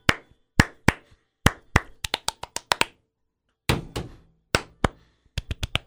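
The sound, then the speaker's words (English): A hand-clap entry in a competition: sharp hand claps in an uneven, syncopated pattern, single claps and quick bursts of several, separated by short pauses and one longer gap, all crisp and fairly loud with no talking. “I think I wish I could think of a hand clap pun, but I think it's going to be a close race for the season finale.”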